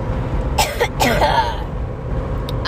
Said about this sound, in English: But anyway, sorry, I have to cough.